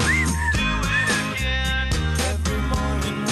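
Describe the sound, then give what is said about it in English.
A whistled melody with short sliding notes rides on top of a full, loud band track with a steady driving beat and thick bass. “I like that whistling.”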